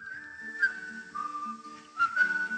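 A clear, sustained whistled melody carries a folk tune, holding long steady notes with small pitch shifts and a soft accompaniment underneath, no voices present.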